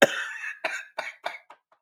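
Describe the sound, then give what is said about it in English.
A dry, raspy cough from a throat dried out by laughing: one strong hacking burst followed by four or five shorter, weakening coughs in a quick, uneven run, fading out, with no talking. “Oh, I'm so dry throat and laughing myself.”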